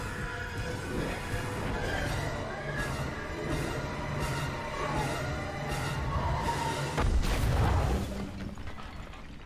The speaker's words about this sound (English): What caused the explosion? It was, they just poured gasoline. Come back from that, motherfuckers. They just poured gasoline. So what was the explosion?